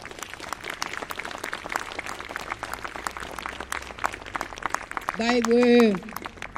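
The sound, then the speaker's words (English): At a rally in Central Australia marking the anniversary of the intervention, a crowd claps for the people of the Yindamu community, a dense patter of many hands that carries on throughout. Near the end a cheer or whoop rises briefly over the applause. “With Yindamu, I'd like you guys to put your hands together and give a clap to the people of Yindamu.”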